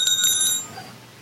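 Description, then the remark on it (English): A pin-dropping sound effect played from a soundboard: a small metal pin drops and bounces, giving three quick, bright, high-pitched tings that ring briefly and then fade into quiet. No voices are heard. “That's a pin dropping.”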